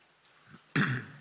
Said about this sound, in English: Excuse me, I need to clear my throat. Now we're ready.